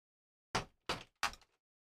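A door being opened: three loud, sharp clunks in quick, even succession, each fading out over a moment, with no one talking.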